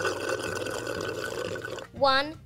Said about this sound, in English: Dancer suggested Santa try and drink a glass of water upside down. She has seen this work with humans before. So Santa grabbed some water, turned his head toward the ground, and slowly gulped water.